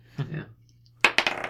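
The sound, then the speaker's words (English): Dice clatter across a hard tabletop in a quick burst of sharp, bright clicks that tumble and settle within half a second, preceded by a brief low murmur of voice, as a player rolls for a perception check in a tabletop role-playing game. “Dice. Who needs dice, yeah, right?”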